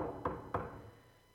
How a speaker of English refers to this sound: One night in South Africa, it was like almost getting close to midnight. And there's this knock on the door.